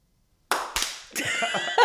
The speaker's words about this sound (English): And when I stop talking, we'll just all try to clap at the same time.